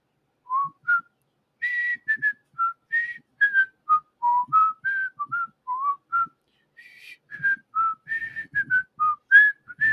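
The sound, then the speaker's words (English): A person whistles a bouncy, quick tune, the theme of The Dick Van Dyke Show: a series of short clear notes hopping up and down in pitch with brief pauses between phrases, alone without talking. “I mean, now I want to whistle the Dick Van Dyke thing.”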